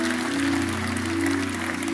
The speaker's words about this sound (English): Come on, let's give the Lord a hand clap for those that have made that decision. Thank you, Jesus.